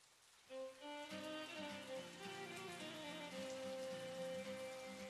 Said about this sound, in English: He lit a cigarette and stared at the window. He noticed outside it was raining again.